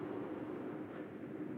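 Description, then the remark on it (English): A fighter jet roars overhead, a steady, dense rushing rumble that holds at an even level for the whole short moment, with no voices over it. “As a fighter jet roars above us. The sound of a fighter jet above us.”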